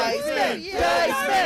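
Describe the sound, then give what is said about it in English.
A live Andrew Dice Clay comedy audience yells and cheers, many overlapping voices rising in loud, pitched shouts with a brief dip before swelling again. “That's clearly an audience. It's clearly an entire audience.”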